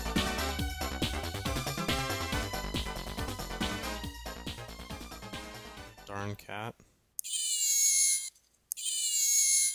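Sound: cat meowing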